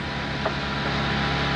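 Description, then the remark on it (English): A car engine in a played film clip drones and rumbles continuously with a low hum and broad noise, holding an even loudness with no voices over it. “Cars sounded so much better back then.”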